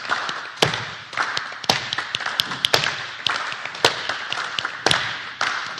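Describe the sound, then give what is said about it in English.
In a group rhythm exercise, sharp hand claps of improvised little rhythms ring out in a loose, uneven rhythm over a steady pattern of soft foot taps and thuds kept going by the group, with no one speaking. “Now keep your feet going just like they are. And then clap anything that comes to you as a little rhythm.”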